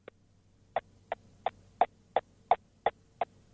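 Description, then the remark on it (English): A car's turn indicator ticks steadily behind the dashboard, about ten crisp, evenly spaced clicks over a faint low hum, with no one speaking. “Where do indicator sounds come from? It's behind the dash.”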